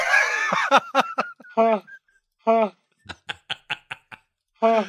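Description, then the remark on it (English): A man's voice makes a string of nasal, honking noises, some long and sustained, others in quick staccato bursts with pauses between, imitating a honk. “Oh, actually, it's just him making a weird noise.”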